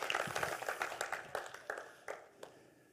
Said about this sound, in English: Come on, we can clap better than that. We go, my brother, should I clap? I don't know.